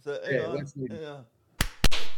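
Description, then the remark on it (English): A short burst of voice, then three sharp, loud slaps in quick succession, the last two nearly back to back and ringing out slightly longer. “That's give me a triple slap.”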